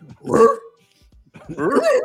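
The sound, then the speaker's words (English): A dog barks twice, each bark a drawn-out, tonal yowl with a short pause between them, and no one talking. “My poor dog's over here looking at me like, "What's going on?"”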